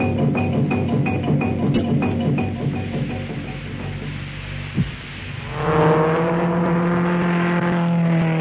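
A car engine hums steadily, then revs up sharply partway through and holds a loud, higher-pitched drone as the car drives on. No voices.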